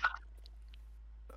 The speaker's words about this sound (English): Just got to take a sip of my Fanta real quick.